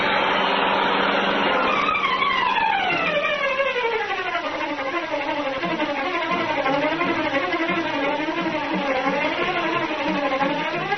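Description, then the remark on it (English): The Green Hornet's powerful black car roars loudly and continuously through city streets, its engine pitch sliding down early on, then rising and falling in waves as it revs, with no voices. “Once more, the powerful black car roared through the city streets, carrying the Green Hornet on his errand of justice.”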